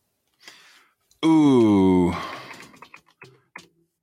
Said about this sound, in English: You've got the noisiest keyboard in the world. It was made in 1997.